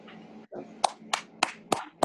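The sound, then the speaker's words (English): Audience clapping for someone's retirement, in a steady rhythm: five sharp, evenly spaced claps about a third of a second apart, rising over a low background murmur after a brief pause. “Everybody get the clap for retirement.”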